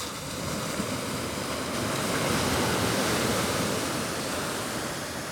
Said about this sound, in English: so we're just coming onto the beach and it's a bit calmer than last night. It's just very, very calm waves lapping up against the shore.